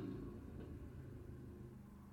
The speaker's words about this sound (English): sorry, there's a truck.